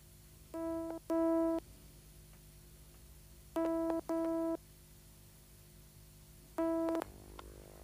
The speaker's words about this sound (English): It's ringing.